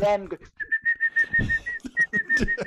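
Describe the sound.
A person whistles a steady, sustained tone like a referee's whistle, with one short break, while someone keeps talking underneath.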